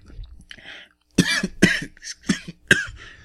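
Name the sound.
coughing and throat clearing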